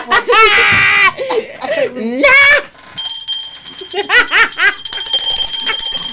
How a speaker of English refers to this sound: Where the fuck that bell at?